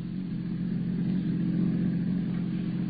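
A car drives steadily toward a dock, with a constant low engine hum and road rumble, holding an even loudness throughout with no talking.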